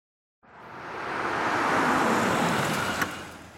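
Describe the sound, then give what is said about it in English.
A car pulls into the driveway next door, engine and tire rumble swelling to a steady, fairly loud wash, with a short click near the end; no voices. “A familiar car pulled into the driveway next door”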